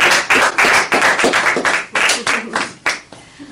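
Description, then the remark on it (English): An audience applauds a woman on her first night of training, many hands clapping in a dense, steady patter that stays fairly loud before thinning out and fading toward the end. “And you know, this is her first time training tonight, so let's give a round of applause”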